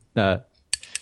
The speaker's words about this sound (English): Was that your bell or was that a ticket clicker? Click, click. Ticket clicker. I have... The guy who stands at the entrance of the stadium and goes click. Yeah, click.